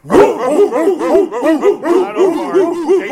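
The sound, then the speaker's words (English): Several people in a studio bark together in imitation of dogs on the count of three, a 'Victory Monday' bark: a dense overlapping burst of loud, rhythmic woofs and yips repeating quickly for a few seconds. “So on the count of three, I need a Victory Monday bark from everybody that's in this studio.”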